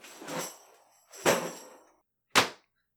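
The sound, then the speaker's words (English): A door being kicked in, in one of the apartment units below: three loud, sharp bangs about a second apart, the first two trailing into rattling crashes, the last a shorter, cleaner slam, with no voices. “It sounded like a door just got kicked in.”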